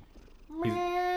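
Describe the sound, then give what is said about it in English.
A male cat purrs loudly, a steady, tonal rumble that swells in after a quiet moment and holds to the end, with no one talking. “He's purring somewhat loudly.”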